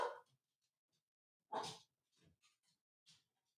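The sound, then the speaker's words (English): A dog barks twice, short sharp woofs spaced well apart, followed by a few softer huffs and yips. Fairly faint, with no one talking. “What is that noise? Is the dog going to bite someone?”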